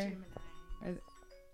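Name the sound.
timer alarm going off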